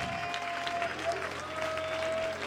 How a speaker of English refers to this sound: That's it. Let's just clap our hands to the Lord.